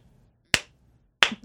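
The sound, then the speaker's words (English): Two sharp, isolated hand claps from the audience at the end of a performance, spaced a little under a second apart, crisp, with near silence around them and no talking. “We got, like, two claps, and then they were like, yo, y'all leaving?”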